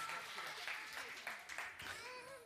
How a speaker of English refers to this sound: Hey, you know what? For a guy who's got a broken foot, I think that deserves a round of applause right there.